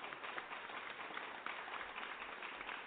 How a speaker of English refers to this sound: Here you go. Here's your clap track.